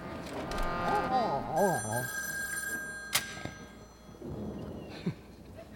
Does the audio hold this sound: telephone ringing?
yes